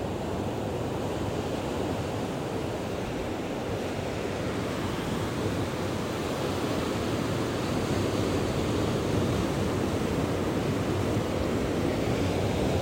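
Steady ocean surf rolls and washes continuously, a full wash of breaking waves with a constant hiss and low rumble, no voices, unchanging for the whole stretch.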